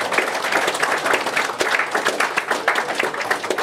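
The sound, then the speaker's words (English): A crowd applauds steadily for Leon Haslam at the Stirrup Cup, many hands clapping in a dense, crackling wash that stays loud and even for a few seconds without any voices breaking through. “Round of applause.”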